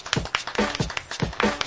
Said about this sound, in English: Why are we clapping? Because it's like with a beat.